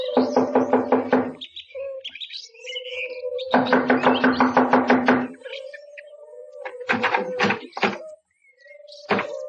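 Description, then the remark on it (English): Two quick, loud bursts of rapid knocking on a door, separated by a short pause, followed by a few scattered thuds and faint creaks. Nobody speaks. “I'll knock on the door.”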